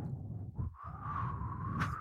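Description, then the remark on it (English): A voice imitates wind blowing, a steady breathy whoosh with a thin whistling tone running through it, fairly loud, lasting about two seconds with no talking. “The wind's blowing.”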